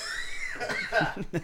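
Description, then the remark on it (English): A loud voice holds a drawn-out tone, then breaks into a short run of harsh, breathy coughs, two or three quick bursts in a row. “We need a cough button.”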